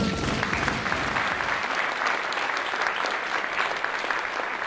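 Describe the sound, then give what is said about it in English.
Sustained applause from a crowd, a dense steady wash of many hands clapping that holds at an even loudness for several seconds without a break. “That was a long hand clap.”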